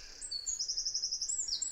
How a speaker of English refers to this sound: Isn't it amazing for such a tiny little bird? Yeah. What a sort of distinct and penetrating call. They've definitely got some voice, and again, it's such a beautiful call, and that sort of tail end there, where it's really fast,